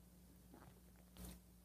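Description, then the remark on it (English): A single brief sip of coffee from a cup, a short soft slurp rising out of a quiet, steady hum, with no talking. “Fill it with your favorite liquid. I like coffee. And join me now for the unparalleled pleasure.”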